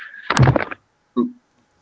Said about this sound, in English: That was a bit bang. Yeah, I knocked my knee against the table.